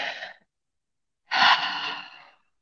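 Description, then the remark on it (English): A brief breath trails off, then after a short pause a person takes a long, deep breath during a guided relaxation exercise, a full airy exhale lasting about a second, fairly loud with no talking. “Love to take a nice deep breath because it resets the frontal cortex and it tells the body, the nervous system, to relax.”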